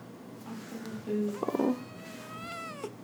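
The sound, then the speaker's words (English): A cat lets out a few short squeaky cries followed by a longer, drawn-out whining squeak while being held by a person, with the person's voice nearby. “I can't get my cat to squeak for you guys.”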